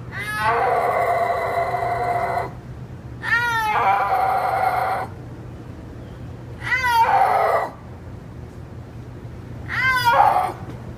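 A snow leopard's drawn-out, mew-like yowls, four in a row with pauses between, each wavering and rising in pitch, loud and harmonic over a low steady hum.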